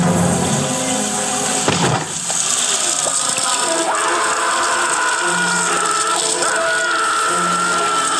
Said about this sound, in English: Here, I'll play it again. You can even. If you listen, you can hear him like gargling. Because the ants are going down his gullet.